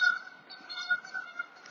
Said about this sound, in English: Really sorry about that. That thing is going... Geese are annoying, bro.